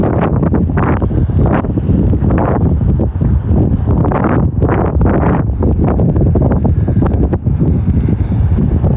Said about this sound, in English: and it's very windy.